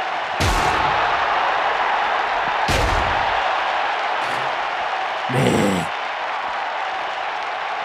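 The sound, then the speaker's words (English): Several loud, sharp steel-chair impacts, about four, crack over a steady roaring crowd as Goldberg hits Daniel Bryan with a steel chair in a wrestling match; the last hit rings with a brief metallic clang. “Goldberg hits Bryan with a steel chair.”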